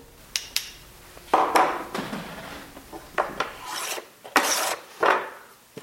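A handmade hand plane scrapes along a stick of wood being carved into a violin bow in a workshop near Boston, in a series of bright, rasping strokes of uneven length, with short pauses between them and no voices, as orange shavings fly off.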